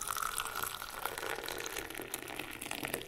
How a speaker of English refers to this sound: poured us cups of their strong English breakfast blended with tea leaves from India and a delicious Earl Grey with genuine bergamot oil from Italy.